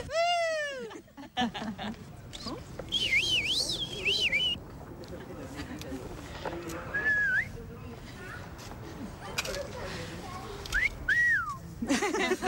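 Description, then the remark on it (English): Several people whistle playfully and confidently in short, bouncy bursts with rising and falling pitch, mixed with chatter and a lively crowd murmur, the whistles popping out clearly at intervals. “So we're just gathering a few playful whistles with a kind of a sense of what it's like to feel very confident about taking up space and whistling confidently.”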